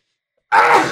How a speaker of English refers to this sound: It's a double-barreled sneeze.